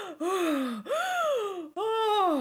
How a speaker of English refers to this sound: just comes out gasping.